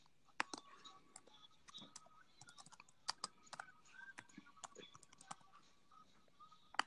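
Quiet typing on a computer keyboard: a steady stream of sharp, irregular key clicks with occasional louder taps.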